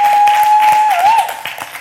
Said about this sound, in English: Can we give the Lord another hand clap of praise if you would?